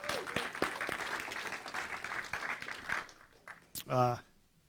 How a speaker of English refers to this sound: If you love having fun, give the Lord a hand clap.